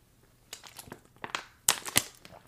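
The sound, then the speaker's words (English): Plastic water bottles crinkle and crackle as they are raised in a toast to Betty White, a quick series of sharp, irregular bursts, with two louder crunches near the end. No one speaks. “Look at our plastic water bottles.”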